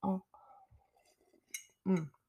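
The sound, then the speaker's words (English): Someone sips and gulps coffee: a louder swallow opens, soft slurping and throat noises follow, then another heavy gulp near the end, with a faint cup clink in between. “Nice big gulp.”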